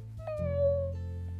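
A single drawn-out cat meow, clear, with a slightly falling pitch lasting about a second over a faint low hum, with no talking.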